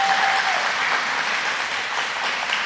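A church audience at Mercy claps for the Lord in sustained, dense applause, many hands at once forming a steady wash of sound that stays fairly loud and even throughout, with no speech.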